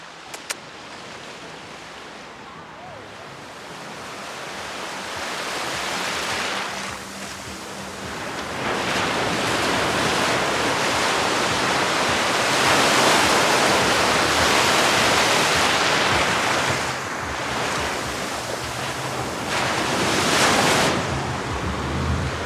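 Ocean waves crash and wash in at a beach in Tulum, breaking around the ankles of a person standing in the water on a day of about 80 degrees, a steady roaring surf that swells louder in broad surges with no voices present.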